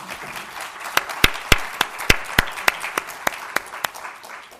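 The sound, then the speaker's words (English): An audience breaks into a round of applause for a panel: a dense, hissy wash of many hands clapping, with a string of sharp, louder individual claps standing out at a steady beat throughout. No one speaks. “And so could we have a round of applause for this wonderful panel?”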